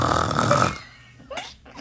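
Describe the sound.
A person makes a loud, rasping snore-like noise with the voice, lasting under a second, followed by a pause and a couple of brief breathy sounds.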